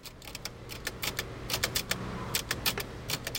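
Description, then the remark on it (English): Clacking keystrokes from a manual typewriter on display and available to touch strike in quick, uneven bursts, each a sharp mechanical snap over a faint low hum, with no voices present. “Then a typewriter made my finger strength feel inadequate.”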